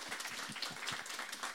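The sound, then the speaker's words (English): A crowd applauds a group of women steadily, a dense patter of many hands clapping at once, moderately loud and sustained without a break for the whole moment. “And can we give them a massive round of applause?”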